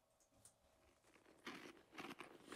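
Crisp crunching of potato chips being chewed, a few loud bursts of crackle coming in quick succession after a quieter start, with no talking.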